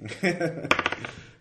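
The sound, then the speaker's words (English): A voice murmurs briefly, then dice rolled for a game attack roll hit a tabletop with a sharp clack and tumble through a quick run of fading rattles, fairly loud, settling after about half a second; the roll comes up a natural 1. “And let me roll a terrible attack roll,”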